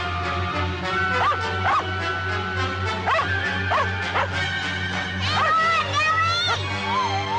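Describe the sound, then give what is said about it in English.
A dog barks frantically, firing off rapid, repeated high-pitched barks and yips with rising and falling whines, loud throughout over a steady low hum. “So the, you hear the dog going nuts”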